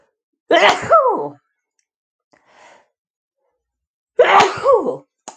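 Two loud sneezes a few seconds apart, each a sharp voiced burst that trails off, with a faint breath in the quiet gap between them.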